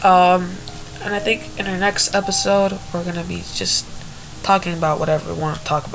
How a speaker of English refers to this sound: Sorry for the white noise. We're gonna get better equipment. Yeah. So it doesn't sound so bad. I'm really sorry. Yeah, if you can still hear it through the music.